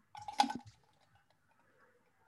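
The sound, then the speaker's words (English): A wet gulp of drinking water, one short sloshing swallow near the start, followed by near silence with a few faint liquid clicks. “Guess who's drinking water right now? You can hear it glug, glug, glug, glug.”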